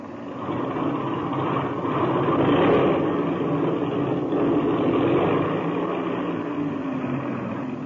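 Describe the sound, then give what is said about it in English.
A small aircraft engine is run up to check that it is turning over properly, with a loud, steady roar, swelling slightly in power a couple of times before settling into a constant drone. “I'll run up the engine to be sure it's turning over okay.”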